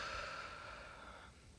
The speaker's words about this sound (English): So, for the clarinet, before you play, here are some useful breathing exercises. So, to start, breathe in as much as you can. And then exhale.